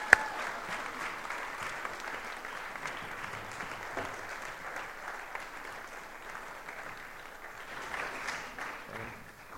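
An audience claps steadily for several seconds, a dense, even patter of many hands at moderate loudness that swells slightly toward the end, with no voices over it.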